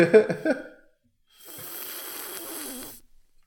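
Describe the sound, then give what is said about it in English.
A few short throaty gulping noises, then a pause and a long, loud, airy slurp of someone sipping a drink into a microphone, lasting about a second and a half. “We need to work on our simultaneous sip game.”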